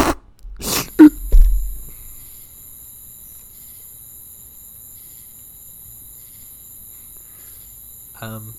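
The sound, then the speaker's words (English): Faint, steady crickets chirring high-pitched, added as a sound effect over an otherwise silent pause, after a couple of brief thumps and breathy noises at the start, with a short voice sound at the very end. “I'm going to put like crickets.”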